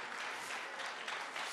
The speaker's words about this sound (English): Amen. Got like 3 or 4 golf claps. So I know that it ministered to you guys.